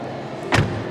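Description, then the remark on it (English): The car door of a long-wheelbase LS luxury sedan shuts with a single solid, deep clunk halfway through, fairly loud over a low, steady background hum. “Did you hear the sound of that car door? The clunk?”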